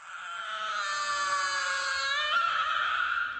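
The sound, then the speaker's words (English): A robot baby brother, just turned on again and trembling, screeches in one long, shrill, high-pitched wail that holds steady for several seconds, loud, with a slight catch in pitch near the end and no talking. “Instead, she scooped up little brother and turned him on again. He trembled and screeched louder than ever.”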